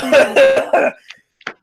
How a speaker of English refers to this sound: Bro, I got the hiccups, bro. It's bad. My body's rejecting it.